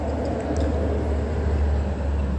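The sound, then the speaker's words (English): Steady, loud road noise dominated by low engine rumble, vehicles idling and passing a bus stop where someone is seated, with a brief hiss resembling an air brake. “I'm sitting at a bus stop flashing direct the light.”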